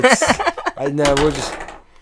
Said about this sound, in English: Let's roll for initiative. 15. All right. Do you know what that means? Just roll a dice.